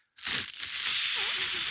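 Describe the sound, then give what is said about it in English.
A steady, airy inhale drawn through burning premium tobacco, with fine dry crackling running through it for under two seconds. It starts abruptly, stays fairly loud, and no voices are heard. “And you'll hear a good inhale. Oh, that is some premium tobacco, baby.”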